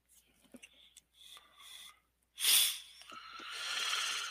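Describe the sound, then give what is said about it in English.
Quiet sniffs and breathy catches build up as a person with sinus trouble tries to sneeze, then a sudden loud burst of air like a stifled sneeze, followed by a long hissing exhale or sniffle. “I'm just trying to sneeze over 5 seconds.”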